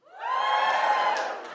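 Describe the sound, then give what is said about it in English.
A live Australian audience, cheering on being asked who is vaccinated, bursts into loud, sustained cheering and whooping, a dense wall of voices that swells quickly and holds for about a second and a half before trailing off. “Who's vaccinated? Give us a cheer.”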